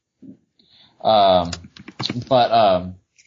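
A short burst of rapid keyboard clicks, close and crisp, sits between two drawn-out vocal sounds, with a couple of faint taps before and after.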